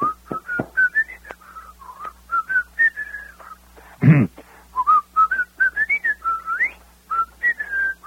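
A person whistles the tune Pop Goes the Weasel in a radio butter commercial, clear, with short separated notes and little slides, pausing briefly midway where a soft thump sounds. No one speaks.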